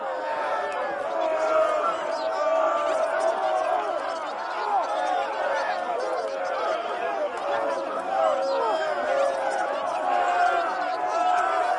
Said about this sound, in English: You know, all that chatter.